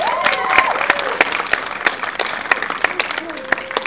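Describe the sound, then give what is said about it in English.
A crowd applauds with dense, crackling clapping throughout, mixed with scattered cheers and whoops, steady for a few seconds, for the Guardians of the Galaxy team representing the Boys and Girls Club of Lunenburg at a championship final at O'Neill's. “Big round of applause.”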